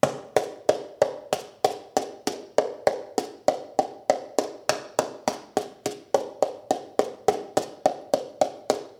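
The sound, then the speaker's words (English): Paper cups clapped together mouth to mouth in a steady, quick rhythm, about three hollow, papery pops per second, fairly loud, with no voices. “What happens when I clap them together, mouth to mouth?”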